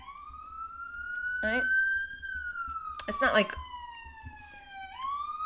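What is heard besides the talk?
emergency vehicle sirens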